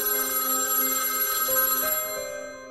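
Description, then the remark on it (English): A home telephone bell rings steadily with a bright, shimmering metallic tone, fairly loud, sustained for a couple of seconds before starting to fade. No voices. “And soon enough, that silence would be interrupted by their phone ringing.”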